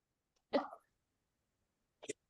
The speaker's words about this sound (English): I tried to mute myself before I sneezed. I don't think I made it.